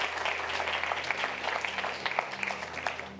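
A church audience claps steadily in praise of the Lord, many hands producing a dense, crackling wash of applause with scattered sharper claps, holding at an even level throughout without any voices.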